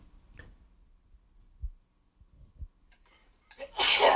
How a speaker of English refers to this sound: excuse me. Sneeze there.